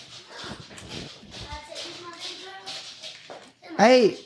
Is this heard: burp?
no